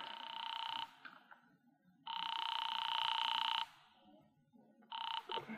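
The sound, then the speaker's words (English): A telephone rings over the line as an operator calls North Tacoloma 3, in North Tacoloma, California. Loud, steady electronic bursts, three rings separated by short pauses, with a faint low hum underneath and no voices. “I am actually ringing North Tacoloma 3.”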